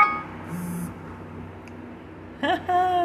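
A medication reminder alarm beeps briefly and shrilly, then gives a couple of steadier electronic tones toward the end over a low background hum.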